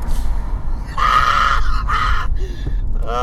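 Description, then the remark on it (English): A man screams out of a window at an old woman in two loud, strained bursts, one after another, over a steady background hum, with a short voiced sound trailing at the end. “You just screamed at an old woman.”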